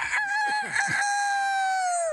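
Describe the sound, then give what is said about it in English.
A voice imitates a rooster crowing: one loud cock-a-doodle-doo with a choppy start and a long drawn-out final note that sags in pitch at the end, heard alone. “Rooster!”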